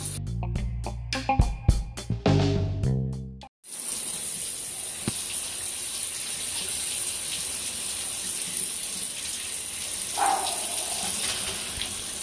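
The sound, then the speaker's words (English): A brief musical jingle gives way to cold shower water running, a steady, loud hiss of spray that continues without a break to the end. “this is Cold Shower Talk. I'm about to jump in”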